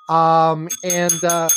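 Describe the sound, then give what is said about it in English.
A metallic bell rings loud, about three strokes in quick succession, each tone ringing and sustaining briefly before the next strike. No voices. “We will ring bells like we did the other week.”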